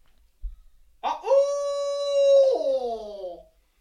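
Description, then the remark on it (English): A person imitates an owl with one long, drawn-out single-note hoot, a simple call a bird gobbles back at, holding a steady, fairly high pitch for over two seconds before sliding downward and fading. No other sounds accompany it. “but there's so many other sounds owls make.”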